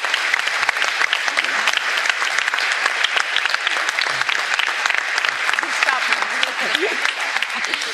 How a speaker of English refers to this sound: And we're supposed to start clapping, okay, prompting.